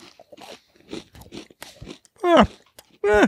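Someone crunches a Nature Valley granola bar in a quick, irregular series of dry, crackly bites and chews, followed by two louder, muffled vocal sounds with falling pitch.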